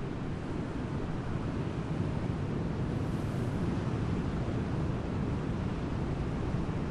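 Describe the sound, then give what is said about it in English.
A steady, full-bodied roar of ocean surf, waves washing in continuously without distinct separate crashes, fairly loud, with a windy hiss mixed in and no voices. “Some beautiful shapes coming through in the waves, though.”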